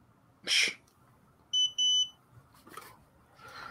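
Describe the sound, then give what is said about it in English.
A smoke detector sounds off with a harsh electronic chirp, then two piercing high-pitched beeps in quick succession, loud, with only faint background noise between them and no talking. “I think right now is a pretty good time because we have this beeping going on.”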